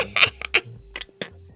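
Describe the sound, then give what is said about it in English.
A phone timer ticks in a string of sharp, bright clicks with an uneven rhythm, about six quick ticks over a second and a half, with a faint steady tone humming underneath. “So I had to turn one phone off so I could get the timer for you.”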